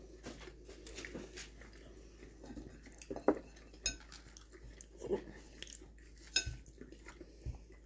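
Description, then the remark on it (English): Sounds of someone biting and chewing a thinly cut steak, trying to bite through a large piece, with soft, irregular mouth noises and a few sharp clinks of cutlery against a plate. “I didn't want to yank out the whole giant piece. I was trying to bite through it.”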